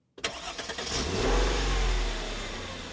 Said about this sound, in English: I was pulling the car out of the driveway, and I turned my head to look at the house one last time.